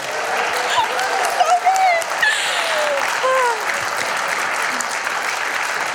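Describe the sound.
An audience claps steadily for an audience member invited up to receive a giveaway, a dense sustained patter of many hands that stays loud throughout, with a few faint voices and whoops rising over it.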